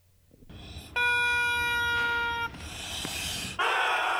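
A shopping cart full of inflatable ducks, pushed down by hand, squeaks all at once like dog toys: a loud, shrill, sustained honking tone for about a second and a half, then harsher, noisier squealing bursts that stop and start. No one speaks.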